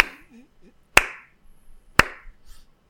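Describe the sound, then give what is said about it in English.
Two loud, sharp hand claps land about a second apart, a mistaken double clap that breaks the rhythm while clapping along to a song, each with a short ringing tail, after a faint murmuring voice at the start. “Shit, I did a double clap and messed up my rhythm.”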